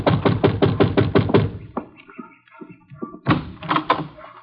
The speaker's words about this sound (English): Yeah, you better knock again.